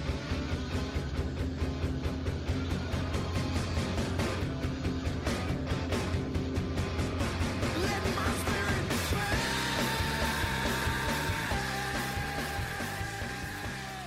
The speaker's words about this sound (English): play when he screams, the build up, and then when he screams, "Let my spirit pass."